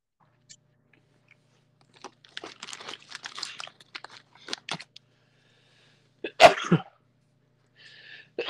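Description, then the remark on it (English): A single sharp, loud sneeze bursts out near the end, preceded by soft crinkling and chewing-like clicks; no one speaks. “Excuse me. Bless you.”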